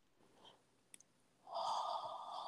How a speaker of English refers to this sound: And I love that you're yawning because that's such a process. Such a way of process. It's clearing, yeah.